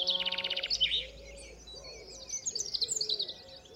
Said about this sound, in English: I have in my possession the last passenger pigeon in existence.